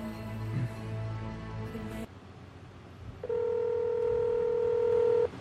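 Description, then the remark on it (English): Electronic telephone keypad tones as a phone call is dialed: one held, buzzy tone, a short pause, then a second, louder and steadier beep lasting about two seconds, clear with no talking. “I think he wonders now, like, why he gets phone calls every Thursday night.”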